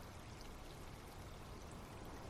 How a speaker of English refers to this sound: She splashes some water at you.